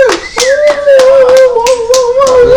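A canned clapping sound effect from a clap machine, played to reward a correct quiz answer: loud, fairly regular claps, about three per second for a couple of seconds, over a steady, slightly wavering tone that runs underneath throughout.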